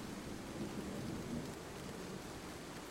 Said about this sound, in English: Okay, so it's still like raining, but it's not like a downpour yet? No, it's not a full downpour yet.